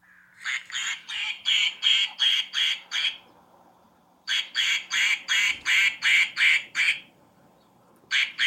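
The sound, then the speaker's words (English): A toy duck quacks as someone hits it, in quick, evenly spaced bursts, about eight in a row, pauses briefly, then repeats the same steady run before starting again. The quacks are loud and nasal, with no talking. “And then she took a video of herself hitting the duck. This is the duck, guys, that would ruin take after take. This is what it sounded like.”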